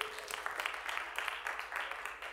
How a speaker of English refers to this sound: Come on, let's clap for the reading of God's word.